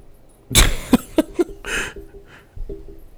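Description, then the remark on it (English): A dog in a room makes a burst of short, sharp snorts and huffs, then a longer raspy whine, trailing off into quieter rustling. No one speaks. “Where's my dog doing? Moneypenny, what are you doing?”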